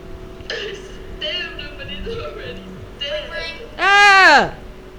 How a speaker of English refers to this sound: Sorry, guys. That was my phone.